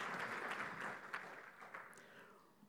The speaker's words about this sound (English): Thank you, guys. Can we just give them a round of applause? Thank you for your help.